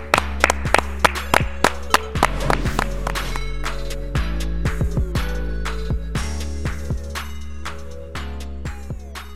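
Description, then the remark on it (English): A run of sharp, uneven hand claps, loud crisp smacks at irregular intervals, ringing over a steady low humming tone for about nine seconds. “Clap it up.”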